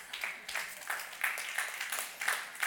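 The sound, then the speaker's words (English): A brief, polite courtesy clap from the audience, with uneven claps rising and falling at a moderate, fairly quiet level and no voices over it. “Courtesy clap. I love it.”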